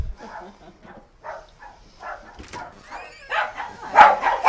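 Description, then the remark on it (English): A dog barks behind the front door of a house in a steady run of muffled woofs, then grows louder and more excited near the end, with whiny yips mixed in. “Well, they have a dog.”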